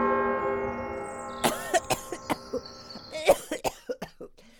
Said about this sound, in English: What have I said about just summoning me up like a genie with Doc's magic bell without asking?